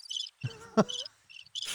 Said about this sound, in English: Is that a squeaky wheel or is that crickets? Crickets.